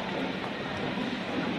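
Steady, dense rumble of a railway station platform with a train, a broad continuous roar holding at a constant level throughout, with no one speaking.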